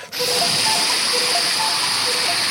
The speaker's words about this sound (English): That is a torrential downpour.